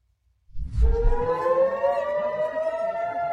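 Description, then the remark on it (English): An air raid siren in Israel warning of incoming rockets starts up after a low rumble and wails in a steady, sustained tone, loud and continuous with a slight rise in pitch, with no voices over it. “The sirens go off, and everybody ducks for cover.”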